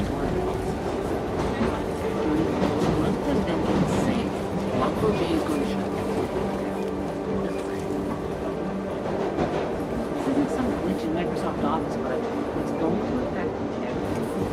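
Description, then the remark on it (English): A subway train, heard from aboard, rumbles and clatters steadily along the rails, loud for the whole stretch, with indistinct voices murmuring under the din. “I'm on the subway. I'm almost there.”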